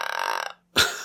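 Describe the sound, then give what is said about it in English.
A croaking, raspy vocal sound rattles in rapid pulses for about half a second, then stops; after a brief pause, a short, louder breathy croak bursts out. No words are spoken. “Like a little croaking tonight.”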